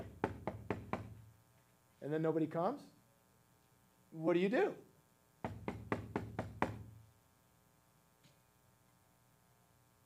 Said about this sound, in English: Do you knock and then just like walk away? One time? No.